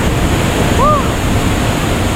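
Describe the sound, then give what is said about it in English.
A waterfall in the tropics pours into a pool of freezing cold water in a steady, loud roar of rushing water, with a brief rising-and-falling tonal cry cutting through near the start. “We got in the water and we wanted to get under the waterfall.”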